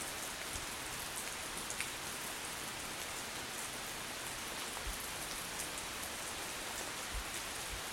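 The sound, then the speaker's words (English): Steady, even rainfall hisses outside a shelter at Herring Cove in Fundy, with occasional louder drops striking a surface. No voices; the downpour stays at a constant moderate level from start to finish. “And what's it doing outside? Raining.”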